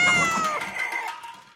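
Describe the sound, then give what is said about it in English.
A single drawn-out cat meow, loud, with a bright tonal whine that slides downward and fades over a second and a half, heard alone with no talking. “do you like cats?”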